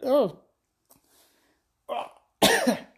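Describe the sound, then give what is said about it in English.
Three abrupt, jerky hiccups burst out from someone drinking a beverage, spaced unevenly with near silence between them; the last is the loudest and harshest. “I got the fucking hiccup drinking this Mulvaney shit.”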